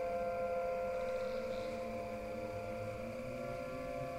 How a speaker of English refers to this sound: A storm shelter at night, there's sirens going on, it's dark, the lights are off